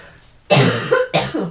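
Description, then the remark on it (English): Two loud coughs in quick succession, the first longer and harsher, the second shorter, with no talking around them. “I have to cough. Hold on. Excuse me.”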